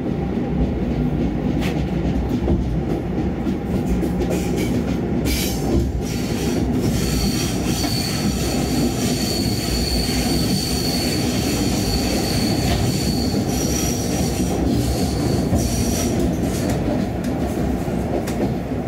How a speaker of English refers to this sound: there's a loco. Nice AC electric loco working its way along, hauling us along in front. Very nice.